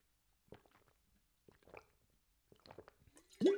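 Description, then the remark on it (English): A person takes three quiet, evenly spaced gulps of water, about a second apart, then finishes with a louder, satisfied breathy exhale. “Let's take a quick water break real quick.”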